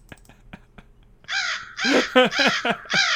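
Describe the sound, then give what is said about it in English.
After a second of faint ticking, crows break into a loud burst of harsh, raspy caws, five or six in quick, overlapping succession. “He's got the Crows worked up.”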